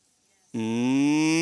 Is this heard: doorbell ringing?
no